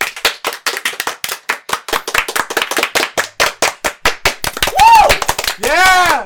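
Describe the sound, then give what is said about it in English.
A homemade clap track sound effect: fast, steady hand claps in a sharp, crisp stream of about twenty hits, then a couple of rising-and-falling whooping tones that sound like voices cheering as the clapping fades out. “Finally, I have a clap track!”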